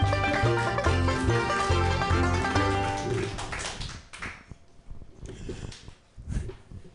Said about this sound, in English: Put your hands together, everyone, and clap them very loudly